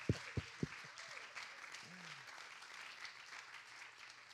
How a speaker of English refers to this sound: It's so wonderful to have the young people in our Thursday night service here today. Let's give the young people a hand clap, make them feel warm, comfortable.